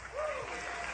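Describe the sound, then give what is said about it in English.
A crowd claps steadily and loudly, a dense, sustained wash of applause that holds for the whole second, with a brief rising whoop or voice briefly heard above it. “Keep the applause down, okay?”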